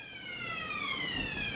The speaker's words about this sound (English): No way. Yeah, it's fire alarm. Is that a fire? Should we leave?